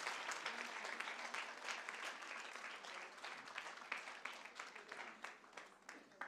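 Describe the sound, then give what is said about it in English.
A steady round of applause from many people, dense crackling claps filling the whole clip at an even, sustained loudness without any talking over it. “Now we can do one last round of applause and they can take their seats.”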